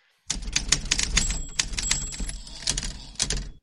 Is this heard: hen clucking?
no